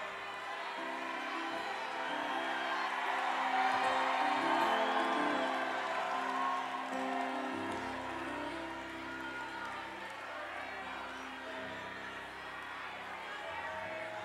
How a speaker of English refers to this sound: They are shouting, "I see you, LP."